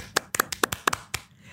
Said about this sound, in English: I know, but can we please give a round of applause to Elizabeth Henstridge for directing this episode?